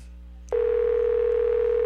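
household object, telephone ringing

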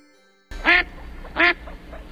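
bird, duck quacking

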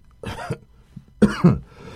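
human body sound, cough

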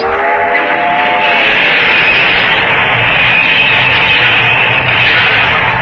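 vehicle, train passing with whistle

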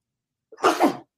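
human body sound, sneeze

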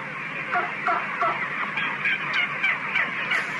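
bird, tom turkey gobbling

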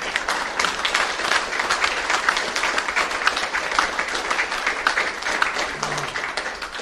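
crowd, round of applause

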